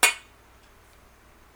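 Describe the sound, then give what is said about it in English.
A single bright, crisp clink of glasses tapped together in a toast, with a short ringing tail that fades quickly into near silence. “Let's give one more cheers. Cheers.”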